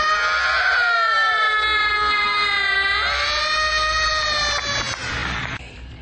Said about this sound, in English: All around him, the newly dead were screaming. Screaming. He threw back his head and opened his mouth. And he, too, began to scream.